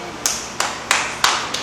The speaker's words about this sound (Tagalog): Amen. Tuloy niyong palakpak sa Panginoon.